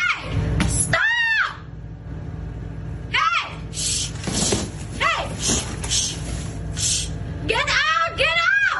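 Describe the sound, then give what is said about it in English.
Several people shriek in high, wavering bursts of panic as a giant brown bear shows up at a 7-Eleven, screams rising and falling in waves over a low rumbling background and scattered frightened voices. “Panic, screams, and tears won't deter this hungry fellow.”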